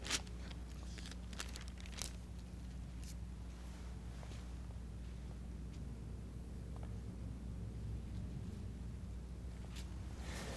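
A steady, low droning rumble of firefighting planes flying overhead, holding an even hum throughout with a few brief crackling clicks on top; no one speaks.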